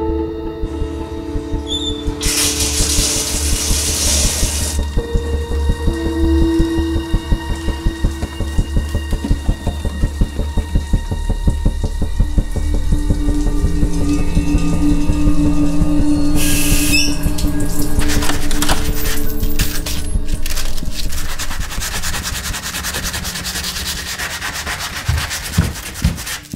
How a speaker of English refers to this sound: Okay, where the key was pointing, I sanded it.